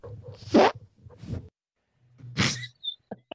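A fart sound effect: a few raspy, buzzing blasts with a low flapping drone, the loudest near the end, followed by a couple of short sputtering pops. No one speaks.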